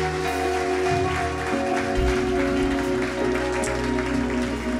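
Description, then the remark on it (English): An audience applauds for everyone who placed their faith in Jesus that day, in a steady, sustained wash of clapping that holds at an even loudness throughout, with held musical tones playing underneath and no one speaking. “Hey, if you placed your faith in Jesus today, yeah, why don't we put our hands together for everyone who did that today.”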